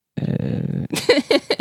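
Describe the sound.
A person playing a gorilla character in a tabletop role-playing game gives a deep, rumbling gorilla-style roar at fleeing pixies as an intimidation attempt, a sustained guttural growl that breaks into a few rough, throaty grunts and huffs. The voiced imitation is loud and rasping.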